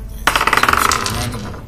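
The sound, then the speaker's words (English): Dice clatter across a hard tabletop in a quick burst of rapid ticking rattles that tapers off within a second, fairly loud, with no one speaking, as they are rolled for extra radiant damage in a tabletop game. “Roll the dice.”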